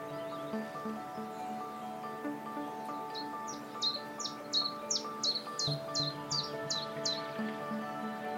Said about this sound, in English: That very mechanical dink, dink, dink you can hear is the chiff-chaff.